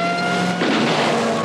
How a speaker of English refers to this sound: A man named Lenny shooting a Tommy gun out of the back of a car being chased through this desert prairie land by a police vehicle with these blaring sirens.